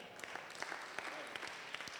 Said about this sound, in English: Can I have an amen? Yeah. Is it that you clap a lot here, or I'm preaching good? which one is it? I'm a little confused.